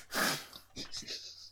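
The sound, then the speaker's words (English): A person's voice imitates the big sniff of a wolf, as a character in wolf form runs over and sniffs: one loud, breathy snuffling burst followed by three shorter, softer sniffs in quick succession. “Like, and Puppy Love, who is currently in her wolf form, runs over and gives you a big sniff.”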